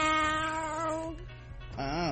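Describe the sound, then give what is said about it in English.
Voices imitate a cat, giving two drawn-out, whiny meows, fairly loud; the first is long and steady, the second bends upward then falls, over a low background hum. “So I recorded this during the middle of Meow, meow, meow.”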